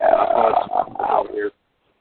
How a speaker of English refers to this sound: with the belch, ladies and gentlemen.